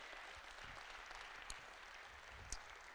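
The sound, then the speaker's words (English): An audience at a church sermon breaks into steady hand clapping to praise the Lord, a dense, continuous wash of many hands with a couple of sharper claps standing out. “Well, somebody just give him a hand clap.”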